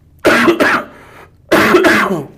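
cough and throat clearing

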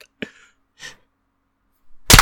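hand clap

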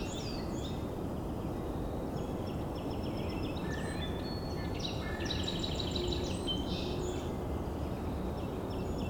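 song sparrow singing

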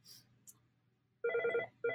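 telephone ringing

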